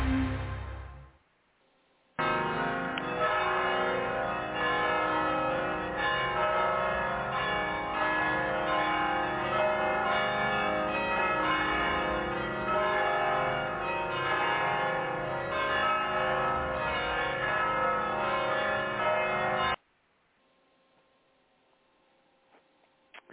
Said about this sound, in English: Those were the mission bells ringing. They're saying, hear the word of the Lord. Hear the word of the Lord.